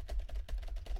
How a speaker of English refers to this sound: I forget, but that keyboard click one is a pet peeve of mine.